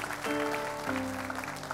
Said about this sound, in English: Give our resurrected Savior a great big hand clap of praise.